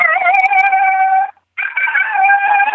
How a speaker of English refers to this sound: So I'll let him howl a couple more times, and then I always answer him with female yodel howl. This is a non-aggressive female coyote.